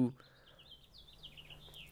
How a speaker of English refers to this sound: Bird just started tweeting really fucking loud. Yeah, it's super loud. Yeah, okay, that really distracted me.